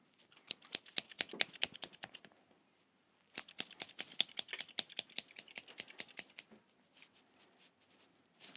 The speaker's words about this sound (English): Scissors.